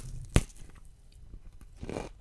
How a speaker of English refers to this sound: No, this guy's totally doing ASMR. Yeah, but when you're chewing broccoli, do you hear the crunching of the little broccoli heads?